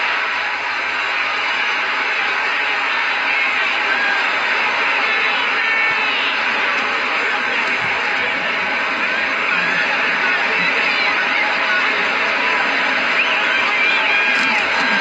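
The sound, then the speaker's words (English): A large boxing arena crowd roars continuously as Foreman lands punches on Holyfield in the second round, a loud, dense wall of cheering and shouting that stays steady for the whole stretch without letting up. “The crowd going nuts here, seeing Foreman score.”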